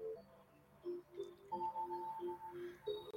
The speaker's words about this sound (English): Is that music just coming in at the right moment? That's my clock.